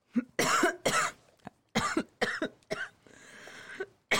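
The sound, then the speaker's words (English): A fit of harsh coughing after smoke goes up the nose: several sharp bursts in quick succession, a short pause, then more hacking coughs with a raspy wheezing breath trailing in between. “Cough.”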